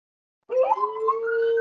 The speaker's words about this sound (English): We've got some puppies here that are quite noisy in the moment. We'll have to wait for a second.